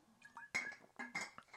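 Glass clinks and knocks as water is fetched: a few sharp, bright strikes with short ringing tones in between, moderately loud, with no voices.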